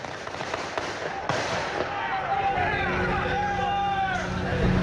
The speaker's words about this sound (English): That's like 150 rounds. Right. Yeah. So they say there were 202, I think, rounds fired total. Like the guy, the shooter and law enforcement. That's the number they're claiming.